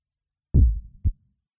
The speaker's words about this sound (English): He was alive. And it was as if each slow, very faint beep of his heart beat throughout my entire being.